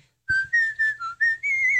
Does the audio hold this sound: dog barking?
no